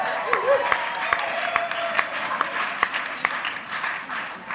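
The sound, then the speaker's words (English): A crowd claps steadily in a round of applause for someone's 21st birthday, dense overlapping hand claps with sharp individual slaps standing out, sustained for several seconds at moderate loudness. “so we need to like give that a round of applause.”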